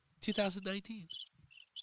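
A crickets sound effect: crickets chirp in short, high-pitched bursts, repeating a few times in quick succession after a louder, tonal opening burst, filling an otherwise quiet moment.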